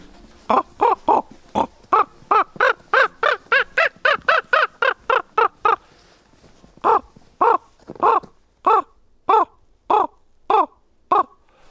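Common raven calls ring out loudly in a forest in the Kośne Chamry protection district of Tatra National Park, Poland: first a quick run of harsh, evenly spaced croaks, then after a short pause a slower series of separate calls. No one speaks.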